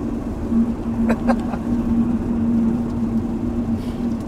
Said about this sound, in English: Yeah, and as you might be able to hear, we're now getting rain on the drive back here, so we'll give you like 10 seconds of sweet rain